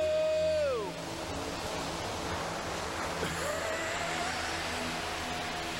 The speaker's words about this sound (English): Here come the waves.